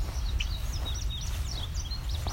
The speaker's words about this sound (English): This is in an urban setting. Houses within view. Quarry on the other side from where the houses are. A fairly mature woodlot beside it. This ticking is from a red-winged blackbird. It's a male.